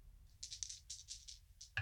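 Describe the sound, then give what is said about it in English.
Two dice rattle and tumble in a quick, clattering burst of small hard clicks lasting under two seconds, ending with a sharper knock as they settle, both landing on five. “That's a 12 total. Okay, no glitch. I rolled 2 5s.”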